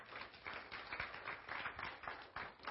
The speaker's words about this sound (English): Well, give the Lord a hand clap. Yeah.